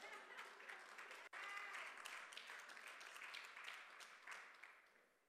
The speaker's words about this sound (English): Those 4 people clapping, I'm gonna give everybody a chance.